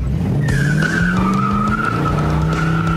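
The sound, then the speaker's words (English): A motorcycle engine climbs in pitch as it accelerates hard while its owner tests its power, the tires letting out a loud, steady high-pitched squeal, continuous for several seconds, with no one talking. “Would you ever consider selling this bike? No, not this one. Labor of love right here, let me tell you.”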